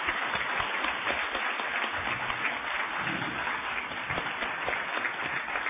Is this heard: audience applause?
yes